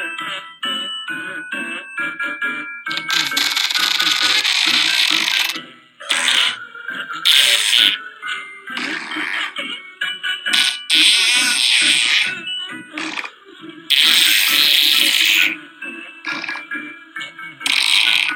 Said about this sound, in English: So I think Giuliani, we had to have a recording of Giuliani trying to get into the Christmas spirit here. And some of his flatulence set to music. Here we go, listen up. Here he is.